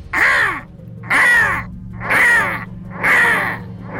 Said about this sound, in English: As he bent down to grab it, the crow released a blood-curdling caw, caw, caw, caw, nearly as loud as the gunshots themselves.